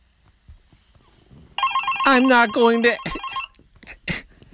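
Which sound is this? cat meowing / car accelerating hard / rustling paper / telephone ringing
telephone ringing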